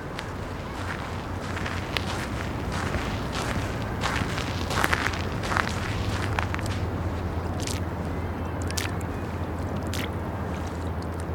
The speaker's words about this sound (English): We're just stepping through a pool of water on the beach, trying not to soak our socks, which I love.